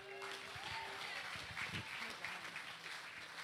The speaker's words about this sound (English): Why don't we just give God a round of applause?